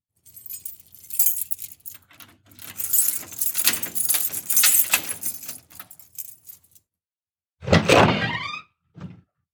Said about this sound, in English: With a growing unease in the back of my head, I moved the key into the hole and turned it.